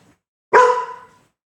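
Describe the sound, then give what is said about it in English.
A single loud dog bark with a sharp start and a ringing tail that fades over about half a second; otherwise quiet, with no talking. “You got barks.”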